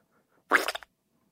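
A short, loud fart lasting about a third of a second, a buzzy burst with a rapid fluttering rattle that trails off quickly, with silence before and after.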